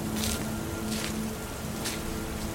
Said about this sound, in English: It wasn't raining as hard as before. The storm was passing, hopefully it'd be gone soon.